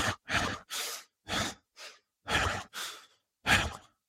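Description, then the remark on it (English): A person demonstrates fast, strained breathing, with about seven loud, strained breaths in quick succession and brief gaps between them. Nobody speaks. “So why would you want to be breathing like this?”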